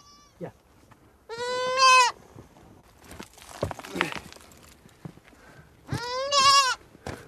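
A goat bleats loudly twice, a long wavering cry near the start and another about four seconds later, with scuffling, rustling movement and faint footsteps between the calls, as the goat is taken out of a rock hole during filming.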